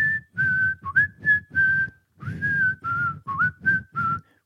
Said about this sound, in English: he's whistling …